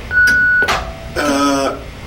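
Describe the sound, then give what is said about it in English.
An answering machine tone on the Mojo Radio Show's phone message: a single steady, high-pitched beep lasting about half a second, followed by a brief noisy clatter and then a voice beginning to speak. “But please, wait for the tone and the boys will be with you shortly.”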